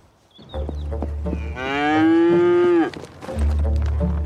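A cow lets out one long, loud moo lasting over a second, with low rumbling and scattered knocks around it and no one speaking.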